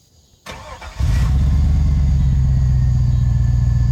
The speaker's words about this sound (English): hint, it's a Borla cat back exhaust. Oh, that's kind of cool.